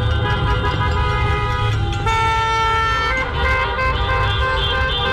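Several car horns blare continuously and overlap during a car caravan protest, sustained honking over a low rumble of traffic, loud throughout.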